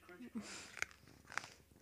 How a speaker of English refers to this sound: Crunch. Oh yeah, I'm sorry for crunching. I'm trying to eat a lollipop.